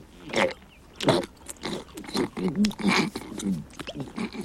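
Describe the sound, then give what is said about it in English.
A voice imitates loud, wet, squelchy chewing with a run of sloppy smacking and gulping noises, continuous, like someone noisily mashing a mouthful of a whole box of gummy candy. “So there's a box full of gummies in his giant mouth, which he's chewing, and there's, like, the most disgusting, like...”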